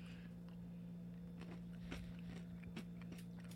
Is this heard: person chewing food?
yes